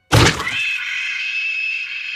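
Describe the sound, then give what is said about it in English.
A single loud, sudden crash of bones cracking as human bodies are swung against a stone obelisk, followed by a sustained metallic ringing that hangs steadily for about two seconds. No voices. “Bones cracked at first contact, and with each subsequent crushing encounter, their shattered skeletons pushed out of their flesh like calcified worms emerging from pulped fruit.”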